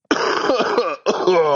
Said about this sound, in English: How's that? How does that sound for you? That sounds awful. Yeah, it is awful. A cough is worth a thousand words. That's right. It's a cough heard around the world.